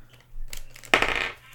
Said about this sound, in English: Let me just roll a d20 for sure on the desk.